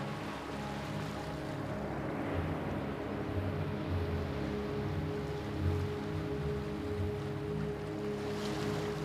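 A steady wash of ocean surf rolls on without pause, soft and continuous, with a faint low hum running beneath it. No voices are heard.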